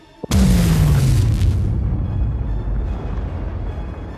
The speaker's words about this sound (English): you two are blasted back as an explosion echoes out, tearing up chunks of concrete, whole trees, and a whole half of one wing of Salem's Lodge.